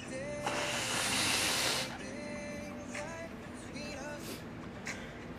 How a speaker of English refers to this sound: Sorry, guys, I'm gonna blow my nose again.